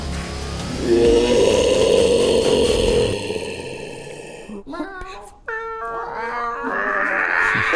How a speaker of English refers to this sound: Bunch of cats. They're like cats in heat. Kitty cats, yeah.